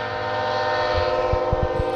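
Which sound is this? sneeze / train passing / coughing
train passing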